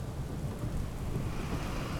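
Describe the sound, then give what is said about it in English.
Steady, heavy rain hisses continuously with a deep rumbling undertone of gusting wind as the wind and rain pick up under ominous clouds and a greenish-yellow sky, loud throughout with no pauses and no voices. “The wind and rain were picking up, and the sky had an unpleasant greenish-yellow color.”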